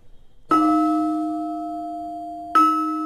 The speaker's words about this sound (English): Now, this gong that you hear is something that was given to us by the Mughals as the official timekeepers of this area. So it is this gong which determined many things to when people went to work and when they came back.